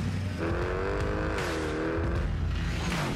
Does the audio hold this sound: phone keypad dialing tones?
no